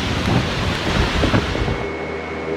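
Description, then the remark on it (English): A powerful thunderstorm battering a shore roars steadily, with dense rain hiss and deep rumbling thunder swelling and fading, loud, with no voices. “But with less coral serving as a natural buffer, many communities need more protection right away from increasingly powerful storms that have been battering their shores.”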